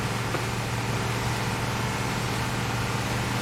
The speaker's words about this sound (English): Did our engine sound just change briefly? Yeah, it changed. It sounds different underwater, which is kind of weird and cool.